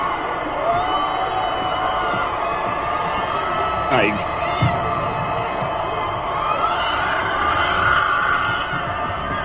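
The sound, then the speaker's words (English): A dense, steady crowd roar of celebration, with excited whoops and scattered high shouts rising above the din, as a woman sprays champagne and screams in 37-degree weather; loud throughout. “because she's just off the chain, spraying champagne, screaming like an idiot.”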